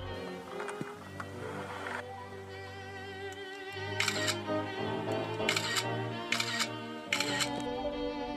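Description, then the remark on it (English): A phone camera photographing something outside an open window fires off several bright, snappy shutter sounds at irregular intervals, each a short burst, over a steady low humming drone that runs throughout. “I want to get a good shot of that thing.”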